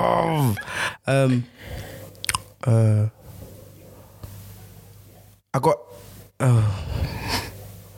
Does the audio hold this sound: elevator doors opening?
no